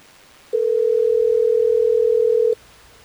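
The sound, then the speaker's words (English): A telephone dial tone as hosts of Hot 101.5 radio in Tampa Bay place an on-air call: one steady, unbroken hum lasting about two seconds, loud and clear against faint background noise, with no talking. “So let's try to get Lindsay on the phone and figure this out.”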